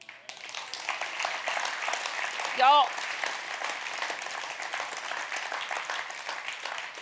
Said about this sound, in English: Do you know what you just did? You just gave a golf clap. That's what you just did.